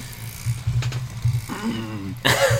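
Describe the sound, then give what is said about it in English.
A snowblower engine runs outside, heard through a window opened all the way along with street noise and cars in the background, with a steady, low, rumbling drone throughout, swelling and roughening briefly at times, with a sharper burst of noise near the end. “Oh, there's a snowblower.”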